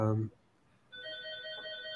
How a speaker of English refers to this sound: So you can hear the phone ringing. We'll let it ring on.